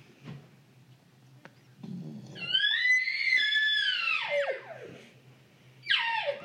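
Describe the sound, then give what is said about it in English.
A Mac Daddy elk call is blown: a low grunting rumble rises into a long, high, whistling squeal that wavers, then slides down, followed by the start of a second shrill blast. “Elk, come on. This is supposed to charge.”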